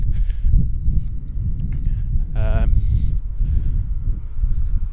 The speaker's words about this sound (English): It's very windy. I don't know if you're going to be able to hear a single word of this.